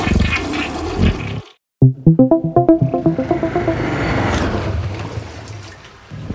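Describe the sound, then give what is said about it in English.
A rapid series of rattling clicks as a toilet handle is jiggled gives way to the loud, rushing roar of the toilet flushing, with no one talking. “You just jiggle the handle like this, right? And then you flush.”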